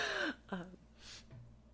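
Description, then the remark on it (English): A dog snores softly on a couch, a few wheezy, whistling snorts followed by a breathy exhale and a low rumble, with no talking over it. “Her dog is snoring on the couch right now.”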